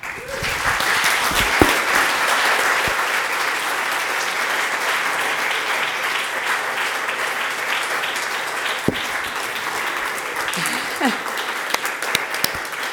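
A large audience applauds steadily and loudly for several seconds, a dense, continuous wash of many hands clapping with a few faint voices and whoops mixed in.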